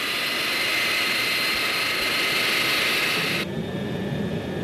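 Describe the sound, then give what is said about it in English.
Airliner jet engines roar loudly and steadily during takeoff, a dense rushing noise topped by a piercing high whine that cuts off abruptly near the end, leaving a lower rumble. “This is the takeoff.”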